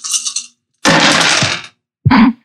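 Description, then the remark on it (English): A handful of dice, rolled for damage in a tabletop role-playing game, rattle and clatter across a hard tabletop in a few loud bursts, the longest a dense spill of clicking impacts, with no one talking. “If you're gonna do that, you should do it into a dice box.”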